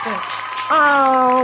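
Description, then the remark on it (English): Applause crackles steadily under loud sustained cheering voices, with the whooping rising sharply partway through and holding strong until it cuts off. “I just want to give your mom a round of applause.”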